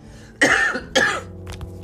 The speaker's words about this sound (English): Sorry about that. I had a little coughing fit.